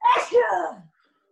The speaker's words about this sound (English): Hold on, I have to sneeze.